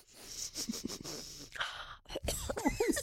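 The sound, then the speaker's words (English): A person sniffs repeatedly, a string of short, breathy inhales in quick succession, fairly quiet, with a few huffs of breath between them and no talking. “Sniffing.”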